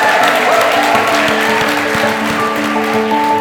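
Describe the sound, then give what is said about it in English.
Steady audience applause for the people on the stage fills the whole stretch, a dense, even patter of many hands clapping at a loud, constant level, with faint tonal hum running underneath. “Well, can we just give one more round of applause to our wonderful people here on the stage today?”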